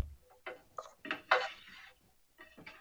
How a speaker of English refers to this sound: Who's washing dishes right now? No idea. Whoever's washing dishes needs to mute.